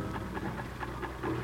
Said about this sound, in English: She worked on the sewing machine while we talked with her.